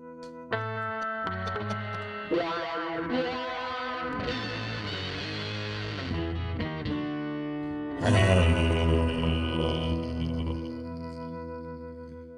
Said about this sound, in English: Before or after the theme song? Jesus, after the theme song.